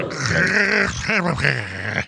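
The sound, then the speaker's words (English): A crunchy, compressed grunt from a character in the video game Soul Calibur: a gruff, strained vocal effort lasting about two seconds, loud and lo-fi, with a gritty, distorted edge and a sudden cutoff. “but any multimedia stuff is going to get compressed. Yeah, it gets dinged. So when you hear it, it just sounds a little crunchy.”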